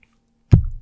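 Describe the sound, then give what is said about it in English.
A single loud, sharp crunch, like biting into a crisp chip, breaks the silence, then trails into a lower, muffled chewing rumble. No one speaks. “You just want to take that chip.”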